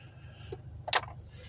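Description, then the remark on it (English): A small metallic click followed by a sharp pop and brief hiss as a Miller High Life beer can is cracked open in a car that is not moving, clear over a steady low engine-like hum. “Let me open up this brewski.”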